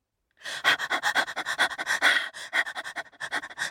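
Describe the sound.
Quick, rhythmic panting breaths, fairly loud, repeating steadily for a few seconds with no talking, from a character named Pip after rushing down the stairs and out into the garden.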